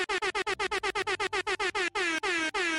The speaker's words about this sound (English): On that last air horn, that shit said whoop.